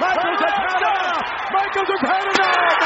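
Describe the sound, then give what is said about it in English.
A single sharp, loud crack as a chair strikes a wrestler's head during a wrestling match, near the end, cutting through a steady roar of crowd noise and shouting voices. “cranium just got crushed!”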